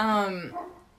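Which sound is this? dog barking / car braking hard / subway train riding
dog barking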